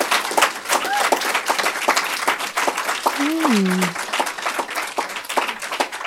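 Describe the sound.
A crowd applauds steadily for about six seconds, a dense, even patter of many hands clapping, with a brief voice calling out partway through.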